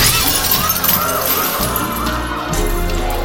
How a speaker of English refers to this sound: One of Vork's alien soldiers crashed through the front window of the restaurant.